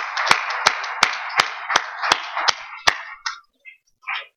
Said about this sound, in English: Brothers and sisters, help me give Student Minister Aisha and Student Minister Wesley Muhammad another round of applause.